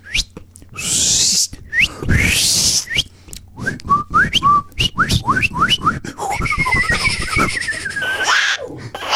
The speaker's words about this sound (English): you can see we're fucking whistling over here. What are you doing?